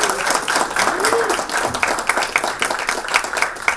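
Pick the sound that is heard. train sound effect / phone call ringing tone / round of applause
round of applause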